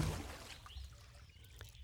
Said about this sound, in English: Down he splashed into the cold, murky water.